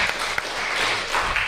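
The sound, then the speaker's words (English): An audience claps steadily to welcome the next speaker, many hands producing a dense, crackling patter that stays loud and even for the whole moment, with no voices standing out. “Give him a clap.”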